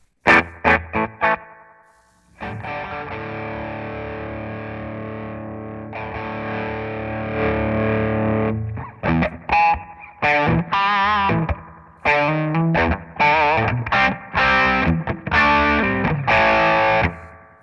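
Electric guitar through a Noble ODR-1 overdrive pedal with delay: a few choppy opening stabs, a long sustained distorted chord, then a run of punchy rhythmic chords with repeats trailing behind. Loud, no talking.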